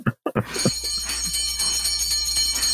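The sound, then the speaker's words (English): The Detroit Pistons basketball team sings a Christmas song on an old recording, bright jingling bells ringing steadily throughout after a couple of short thumps at the start. “Here's the Detroit Pistons singing Jingle Bells.”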